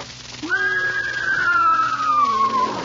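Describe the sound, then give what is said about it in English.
A mare in a studio gives a single drawn-out whinny, a high wavering cry that slowly slides downward in pitch over about two seconds, clear over a faint steady background hiss. “You got a horse out in the lobby of NBC?”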